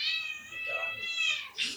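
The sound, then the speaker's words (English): A female pet cat, Ozzy, lets out a drawn-out, wavering meow lasting over a second, followed by a short, sharp second cry, both loud with no talking over them. “I am going to capture a cat.”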